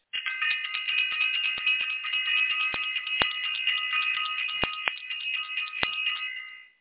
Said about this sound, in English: I want to ring the bell. Or self-invested. I want to ring the bell for self-invested because it definitely is that time.